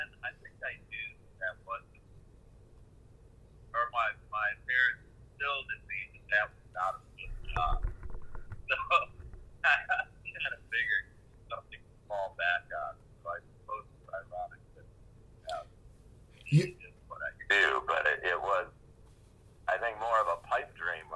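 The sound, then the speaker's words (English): A voice on a thin, tinny phone line during an interview call, breaking up repeatedly as the connection drops in and out, leaving choppy fragments of speech with brief gaps and a low rumble underneath. “Yeah, you're cutting out a little bit on me, but we're having a little connection.”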